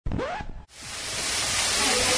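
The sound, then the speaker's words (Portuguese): A brief voice is cut off, then a hamburger patty sizzles in the pan: a steady, loud, crackling hiss that swells quickly and keeps going without pause. “Esse barulho que tá fritando é o hambúrguer?”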